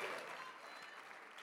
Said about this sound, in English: My Lord, I honor our president. Can we give the president and the first lady a great big round of applause?